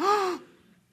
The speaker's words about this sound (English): Everybody gasp.